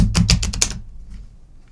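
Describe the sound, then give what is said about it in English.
A quick burst of crisp papery clicks lasting under a second as a deck of playing cards is riffle shuffled, then near silence with a faint low rumble. “Well shuffled.”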